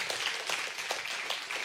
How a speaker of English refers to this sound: and we had countless donated food items that allowed us to hand out 100 turkeys to 190 families here in the Tallahassee area. As well as, there you go, now you can applaud.